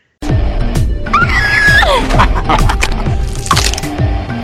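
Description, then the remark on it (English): A woman lets out a shrill, wavering death scream from a movie as her character is killed, lasting about a second, partly buried in loud, chaotic crashing and crackling noise that continues throughout. “because when she like gets killed, she has the worst scream when she dies.”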